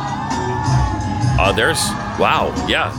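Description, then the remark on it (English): A huge street crowd, packed shoulder to shoulder for mile after mile along the road to a stadium in a foreign country, roars and cheers in a dense, continuous wash, with individual voices whooping and shouting in rising, wavering cries above the din. “It's that kind of crowd and bigger.”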